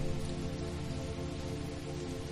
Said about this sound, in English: It's the perfect, hot, summer, rainy night in a covered porch with so many candles.